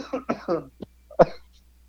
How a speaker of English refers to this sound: So he's been, like, dying with a cough.